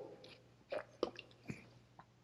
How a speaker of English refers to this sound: I shouldn't have taken a sip then.